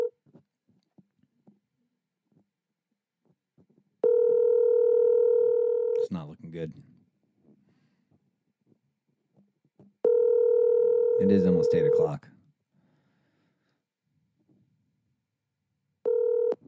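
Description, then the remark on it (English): A phone's ringing tone, held right up to a microphone, pulses loud and close, three steady two-second bursts separated by pauses, with a voice speaking briefly in the gaps between rings. “Put the phone right up to the mic.”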